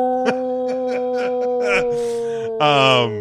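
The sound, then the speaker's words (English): A person imitates a wolf howl, starting with a few short rhythmic yips and then sliding into a sustained, wavering howl, loud, with no other talk. “Why did you become a fucking wolf?”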